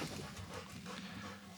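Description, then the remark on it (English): An excited dog named Cowboy pants steadily while moving around, with soft shuffling and scrabbling noises mixed in. The sound is fairly quiet and continuous, with no voices. “This dog, by the way, over here, we're getting distracted.”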